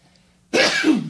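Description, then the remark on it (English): After a moment of near silence, someone lets out a single sudden, forceful sneeze, a loud breathy burst with no talking around it. “Bless you. Gesundheit.”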